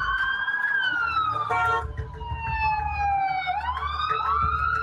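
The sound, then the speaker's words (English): A police car siren wails loudly as the car speeds down Broadway in New York toward the World Trade Center crash scene, its pitch sweeping down and back up in long glides over a steady rumble of traffic and engine noise. “It was like, hit the siren, throw the light up on the roof, and jet down Broadway.”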